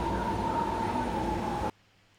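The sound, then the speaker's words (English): A loud, steady rumble of a BART subway train at a typical platform in San Francisco, with a sustained metallic whine over the roar, cutting off abruptly to near silence as the train stops; no one speaks. “Now there are places marked where the doors are going to be when the train stops.”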